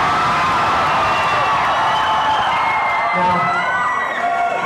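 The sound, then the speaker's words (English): A large audience screams together in one loud, sustained burst of free improvisational screaming at the end of a live show, many overlapping voices wailing and whooping at different pitches for several seconds without letting up. “The last tradition, of course, being the secret pact that we make with each and every audience, and that is to ask you to solo jam and do some free improvisational screaming with us at the end of the show.”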